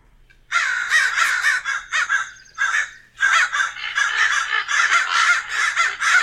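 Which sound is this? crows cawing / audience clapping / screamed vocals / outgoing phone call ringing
crows cawing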